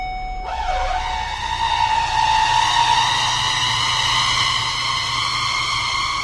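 A car makes a loud, brassy malfunction wail that sounds like an elephant trumpeting: one tone swoops briefly, then holds steady for about six seconds over a low engine rumble.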